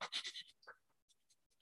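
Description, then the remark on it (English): A person demonstrates rapid, shallow breathing: a quick run of about five loud, breathy puffs, followed by softer, scattered breaths that fade out. “So breathing becomes very rapid and shallow.”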